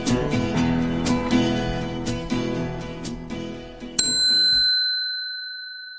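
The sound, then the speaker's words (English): A small bell inside a Mazda car strikes once near the end, its bright, clear tone ringing out and slowly fading, following several seconds of a dense, busy background that then cuts to silence. “Because I'm in the Mazda, my wife's car, and you never hear the bell in the Mazda, but today I went into the Toyota, took it out, put it in the Mazda, because that's what I'm driving, with the heated seats,”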